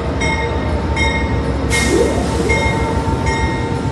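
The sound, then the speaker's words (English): An Amtrak passenger train, the Cardinal, rolls along the rails with a steady, loud rumble, high metallic wheel squeals coming and going, and a brief hissing burst midway. “Amtrak will use a $500,000 grant from the Federal Railroad Administration to begin the planning process toward making the Cardinal a daily train.”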